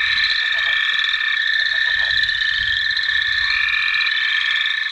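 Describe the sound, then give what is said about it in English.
A loud, dense chorus of Couch's spadefoot toads calling continuously, overlapping nasal bleats merging into a steady droning wall of sound with no pauses, filling the whole recording. “There's a little toad called a couch's spadefoot toad that you can even find in central Phoenix in some cases.”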